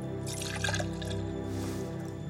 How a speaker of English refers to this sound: George grabs a pitcher of water, pours himself a glass, and takes a big gulp.